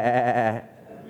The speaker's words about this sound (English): He says, what then is this bleating of sheep in my ears?